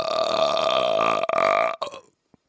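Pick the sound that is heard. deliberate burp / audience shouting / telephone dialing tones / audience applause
deliberate burp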